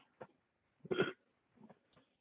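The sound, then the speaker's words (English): A single short, low burp from drinking a carbonated drink rumbles out, with a few faint throaty sounds before and after it; nobody talks, and the whole thing is quiet. “Apologize for all the burps, folks.”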